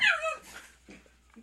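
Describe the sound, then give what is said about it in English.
A dog named Wendell yelps and whimpers in a high, excited burst at the start, freaking out, then softer whines and small yips trail off, with no one talking. “Dogs! Hang on one second.”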